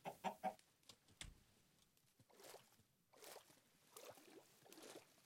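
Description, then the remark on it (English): A chicken in a video game, run into by a player's boat on a lake, clucks in a quick burst of three or four short calls at the start, followed by scattered softer noises and a few more faint cluck-like bursts; no one speaks. “Oh, I ran into a chicken.”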